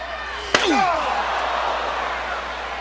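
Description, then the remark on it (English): A single loud, sharp metallic crack of a steel chair striking a wrestler during a wrestling match fought on the steel roof of a cage cell, its clang ringing and bending downward as it fades, over a steady roar of a large crowd. “Chair shot just makes you sick, makes your blood curl.”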